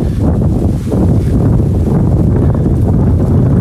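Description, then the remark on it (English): Strong wind buffets the microphone in a constant low roar, loud, with heavy rumbling gusts and no voices or other sounds coming through. “It is so windy.”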